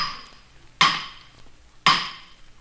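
Two sharp metallic hammer strikes driving a golden spike, about a second apart, each a bright clang with a ringing tail that fades before the next blow. No voices.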